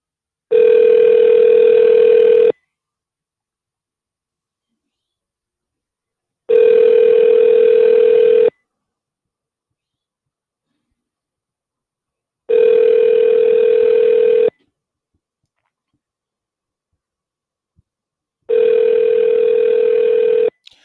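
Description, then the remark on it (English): A phone's outgoing ringback tone, from a call being placed to a number, repeats four times, each steady two-second ring separated by about four seconds of silence, clear with no voices. “It's ringing.”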